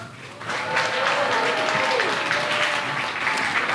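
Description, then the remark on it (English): An audience welcoming a guest speaker breaks into sustained applause, a dense steady clatter of clapping with whoops and cheers rising through it, holding loud for several seconds without any speech. “So let's make some noise for”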